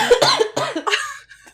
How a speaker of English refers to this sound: Also, if we kept the cough in, I don't have COVID. I have a nasty sinus infection that I'm still trying to fight off. So if I sound weird, that's why.